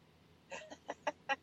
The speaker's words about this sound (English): So, it is such a beautiful day. Birds are chirping. It's warm. It's going to be hot today. But, yeah, chirps are birding. Exactly. Yeah. I love the birds.